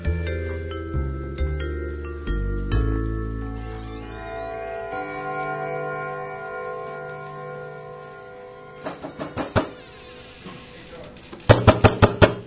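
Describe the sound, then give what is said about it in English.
Sustained ringing, chime-like tones fade out, then a quick series of about four knocks on a door, followed by a louder, tighter cluster of knocks near the end. “Hello? Who's there? It's …. We spoke yesterday. Open the door, please.”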